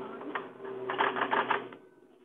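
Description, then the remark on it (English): A typewriter space bar is pressed four times in quick succession, a cluster of muffled mechanical clacks over a steady low hum, with no talking. “Okay, start this line again. Okay, sure. It's space 4 times.”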